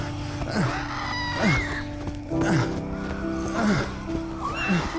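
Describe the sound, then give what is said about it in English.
Nearly 100 monstrous creatures snarl and shriek as they chase a fleeing person over a hill, in a dense, overlapping chorus, harsh cries rising and falling about once a second, loud, with no one speaking. “I could hear them snarling right behind me.”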